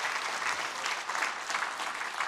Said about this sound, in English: Can we give the Lord a hand clap for that truth and for that reality? Amen.